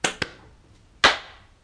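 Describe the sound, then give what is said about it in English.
Sharp hand claps from people trying to clap together on a count of three, not quite in unison: two quick claps a split second apart, then a louder clap about a second later, each trailing off in a brief ring. No one speaks. “Just clap. Okay. Okay, here we go. 3, 2, 1.”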